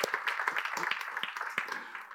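A crowd applauds steadily, with many overlapping claps forming a dense, continuous patter at moderate volume, heard from a little distance over about two seconds.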